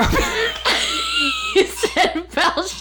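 A deep, guttural belch rumbles out, drawn out for about a second, followed by a few short bursts of laughter and breathy vocal sounds.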